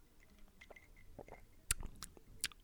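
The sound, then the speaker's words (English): Quiet wet mouth sounds: a few soft slurps and small smacking clicks from a first sip of a drink from a mug, with two sharper clicks near the end, no talking. “First sip right here.”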